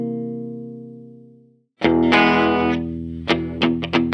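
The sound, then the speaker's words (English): A mellow jazz chord on an electric guitar with foil pickups rings out and slowly fades, then gives way to loud, distorted strumming punctuated by a few sharp accented hits. No one speaks. “Hit me with the jazz chord.”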